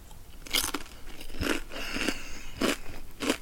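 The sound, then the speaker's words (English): Loud crunching as a crisp Grain Waves chip is bitten and chewed, with about five sharp, crackly bursts in an uneven rhythm and no talking. “Well, that's just a cacophony of mastication there.”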